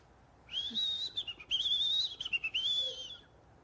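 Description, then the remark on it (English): A man whistles a warbling, birdlike tune for a king, imitating birdsong in a few connected bursts with brief breaks, clear against a quiet background. “They spent another hour with the man playing birdsong for the king.”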